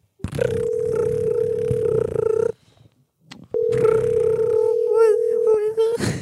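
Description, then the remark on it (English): A phone call rings out with no answer: two long, steady buzzing ring tones separated by a short pause, fairly loud, with some faint murmuring layered beneath the second ring. “They're not picking up.”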